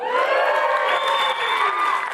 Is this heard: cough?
no